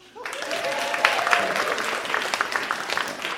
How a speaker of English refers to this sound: Like, round of applause.